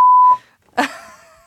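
A loud, steady censor bleep from a new soundboard button sounds for about a third of a second and cuts off. After a short pause, a brief burst of a different, noisier sound follows and fades out.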